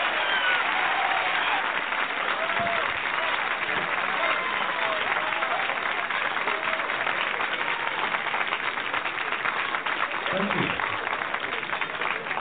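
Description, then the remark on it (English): A large San Francisco audience applauds and cheers steadily and loudly as comedian Richard Pryor is introduced, a dense continuous roar of clapping with scattered whoops and shouts rising above it. “Let's get your hands together and give him a big San Francisco round of applause.”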